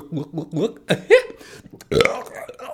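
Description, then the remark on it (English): A voice mimics burping, letting out a few short throaty belches followed by two longer drawn-out ones, loud, with no real speech between them. “You know, big fat sinner, you know, sweaty fat sinner, burping and belching and belly aching, crying about his crimes, you know.”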